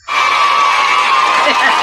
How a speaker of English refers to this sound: Where's the cue for the huge applause? I'm kind of bummed.